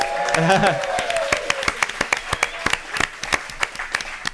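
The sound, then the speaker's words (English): Audience applause of scattered, crisp claps that continue steadily for several seconds, opening over a brief whooping cheer from a voice. “One more time. Give it up”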